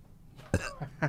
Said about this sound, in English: I keep burping.